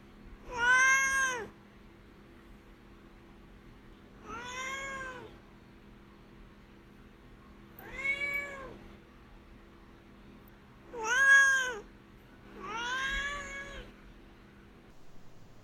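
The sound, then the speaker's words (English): A cat named Duarte meows five times in a row, each call drawn-out and wavering, spaced a couple of seconds apart, fairly loud against a faint hum. “Now it's time for Duarte's Corner, where my cat Duarte will share his opinions about the book.”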